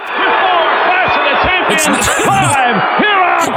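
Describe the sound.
A loud, dense wrestling arena crowd roars continuously in reaction to Hulk Hogan, with overlapping shouts, whoops and jeering voices mixing cheers and boos, many booing him, and a few higher yells cutting through the steady wall of noise.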